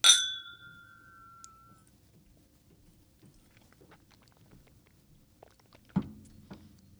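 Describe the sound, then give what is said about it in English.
A single bright clink of glasses touching in a toast, ringing out for a moment before fading, followed by a quiet stretch of soft sipping and swallowing as a drink is tasted, and a small thud near the end. “We're gonna drop a quick taste on this real fast. Cheers, my friend. Cheers.”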